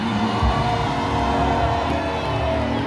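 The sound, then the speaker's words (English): A large church audience screams and cheers at once, a dense, loud roar of many voices that stays steady and continuous, with no single speaker standing out. “I said, get up and scream.”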